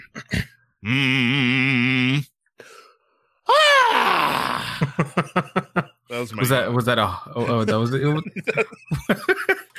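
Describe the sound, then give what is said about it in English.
As a public speaking breathing exercise, a single person hums a steady, sustained note for about a second and a half, then after a pause lets out a breathy open 'ha' and a drawn-out, groaning yawn, fairly loud. “That was a yawn.”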